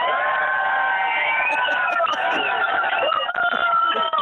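A tour group of about 52 people at the Sea of Galilee in Israel, in sunshine, cheers and shouts hello to Chicago all at once. It is a dense wall of overlapping voices that stays loud and steady for several seconds, with a thin, tinny quality like a phone line.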